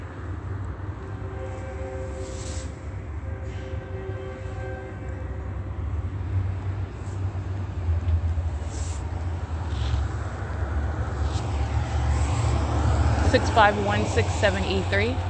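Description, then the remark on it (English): A Union Pacific freight train rumbles past with a deep, steady drone that builds louder over time, joined near the end by high metallic squealing from the wheels. “That's Union Pacific. The sound of the train.”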